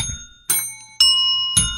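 A small bell is struck three times at roughly even intervals, each strike bright and metallic with a clear ringing tone that sustains until the next hit.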